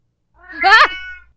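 A single strange, drawn-out cat cry, fairly loud, wavering up and down in pitch for about a second before trailing off, with no growl and no talking.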